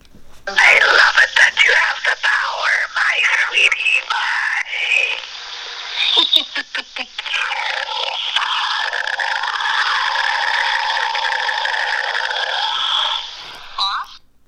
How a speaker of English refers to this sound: But then it goes into this loud roaring growl of sorts. So I'm going to play that for you. The speaker right up there.